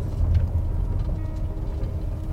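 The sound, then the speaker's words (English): A vehicle rumbles steadily, its deep engine and road noise holding an even level as it rolls to a stop and parks by a mailbox, with no voices. “His old truck there, so he's at home now. Remember to park up by the mailbox.”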